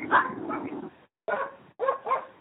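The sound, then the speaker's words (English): The speaker's pet dogs bark and whimper in three quick bursts, a longer opening yelp followed by two shorter ones separated by brief silences, with no talking. “Those are my dogs.”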